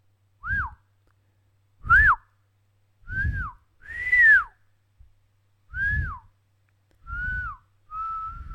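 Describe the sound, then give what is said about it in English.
A person whistles a simple tune of about seven short, separate notes with brief pauses between them. The whistle is clear, with an audible breathy puff behind each note and no talking. “What's a melody that would be hard to whistle?”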